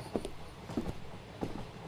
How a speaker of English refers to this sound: Whoa, wait a second. The train is slowing down.